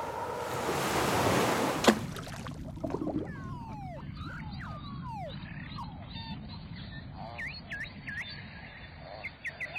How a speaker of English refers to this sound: Okay, and here's when I traveled all the way north to the Arctic Ocean and heard the sensational song of the beluga whale. Sorry. It's a little bit windy that day, but listen to what happens when the mic dips down below the waves.